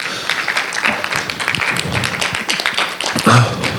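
An audience breaks into a round of applause, dense overlapping clapping that holds steady for several seconds, with a brief voice or cheer rising near the end.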